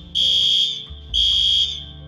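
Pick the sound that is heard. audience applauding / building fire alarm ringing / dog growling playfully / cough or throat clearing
building fire alarm ringing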